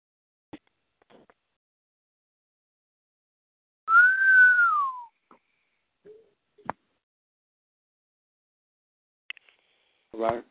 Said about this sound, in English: Right. I hear you whistling. Come on in.